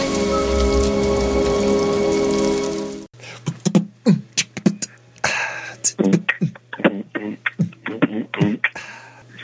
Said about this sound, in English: I wish the rain would stop just once. Can't rain all the time.